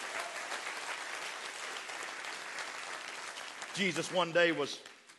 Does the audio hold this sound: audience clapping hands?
yes